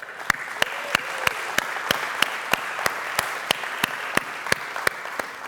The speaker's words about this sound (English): Am I clapping too close to the mic?